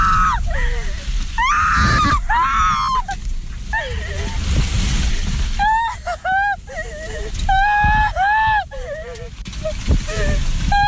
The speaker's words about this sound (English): And a woman posted a video from her car where she was caught in the middle of this thing. The video is pretty incredible. And shattered glass, and she is, I mean, this woman is, you want to hear fear, this woman's screaming.